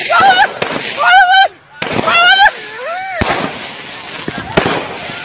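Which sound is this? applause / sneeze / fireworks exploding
fireworks exploding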